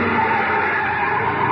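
Loud, sustained squeal of car tires skidding to a stop by an alley toward the freight yards, a harsh continuous screech lasting the whole moment with steady intensity, with no voices.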